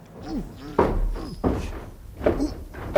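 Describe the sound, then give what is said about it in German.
A heavy armored metal door being worked open, with several loud clanking thuds spaced about a second apart, low rumbling resonance and creaking scrapes between them. “Mann, sieh dir mal die Tür an. Das ist ja eine Panzertür.”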